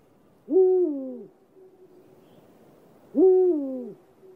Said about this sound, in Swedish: Berguv. Jaha, pausfågel, nu är jag med.